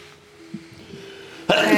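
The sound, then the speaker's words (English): After a stretch of near silence, one sudden, loud sneeze bursts out at the very end, sharp and breathy. “Bless you.”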